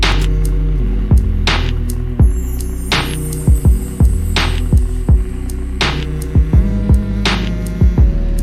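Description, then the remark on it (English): Two voices hum a short melodic hook together over a steady, thumping beat with crisp percussive hits. The humming is prominent, and no words are sung or spoken. “Oh, yeah, what as if we got a humming hook.”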